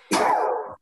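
human body sound, sneeze

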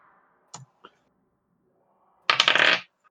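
household object, typing on a keyboard

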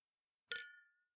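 household object, martini glasses clinking

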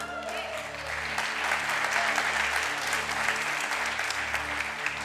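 crowd, audience applauding and cheering

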